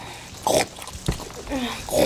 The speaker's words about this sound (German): Hör auf zu grunzen, du bist kein Ferkel.